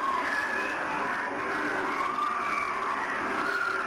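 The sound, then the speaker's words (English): A recording said to have been made down a 14-kilometre-deep well: a dense, continuous wall of eerie wailing like many people screaming at once, with high tones wavering up and down over a steady rumbling roar, loud throughout with no talking. “This is people screaming.”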